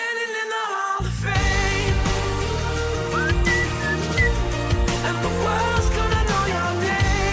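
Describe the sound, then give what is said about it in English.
Someone whistles a short melody of bright, sliding notes over a full music backing, the whistled tune clearly audible but sitting within the mix rather than alone. “Who was whistling?”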